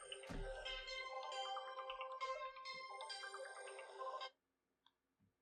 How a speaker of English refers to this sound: It's a nice ringtone.